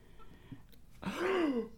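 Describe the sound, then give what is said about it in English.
A single loud, theatrical gasp: a sudden breathy intake with a rising, then falling, voiced whine, performed for dramatic effect after a short quiet pause. “Murder mystery gasp.”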